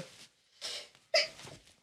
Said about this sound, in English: Bless you, Sneezy McSneezer. You got allergies or something?